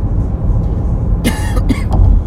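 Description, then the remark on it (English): A couple of sharp, harsh coughs burst out over a steady low rumble of background noise, followed by a brief throat clear. “Fucking cough.”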